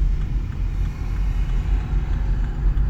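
A police car's engine rumbles steadily just ahead, a deep, continuous low drone with a faint hiss of road noise above it and no voices.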